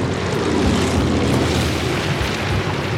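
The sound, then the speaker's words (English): A propeller plane roars steadily and loudly as it lands on hard-packed beach sand, its wheels touching down as it skids and fishtails to a stop; a continuous, dense rush of engine and wind noise with no distinct bumps or breaks, and no voices. “When the wheels touch down, the plane skids and fishtails in the sand before bouncing to a stop.”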